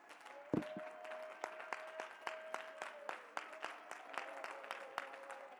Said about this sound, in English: Clap your hands unto the Lord, please. Glorify His name.